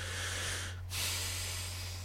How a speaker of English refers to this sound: Sorry, I was thinking. I'm breathing.